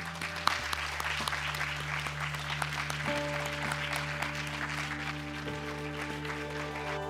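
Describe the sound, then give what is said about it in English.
Steady applause from a seminar audience at the Swedish Institute of International Affairs, thanking two presenters. Many hands clap in a dense, continuous patter that holds at an even level throughout, with a low steady hum underneath. “And I would like all of us to join me in an applause for the two great presentations that we had today.”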